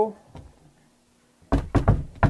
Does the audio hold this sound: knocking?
yes